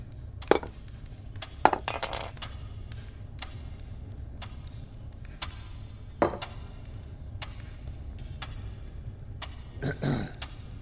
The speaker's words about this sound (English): Yeah, just the sounds of forks hitting like ceramic.